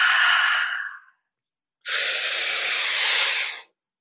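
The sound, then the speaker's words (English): Two long, deep breaths in and out during a breathing exercise, a breathy exhale followed after a short pause by a longer, airy hissing breath, with no talking. “Continue breathing in and out. Exhale.”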